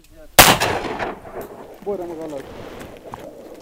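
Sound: gunshot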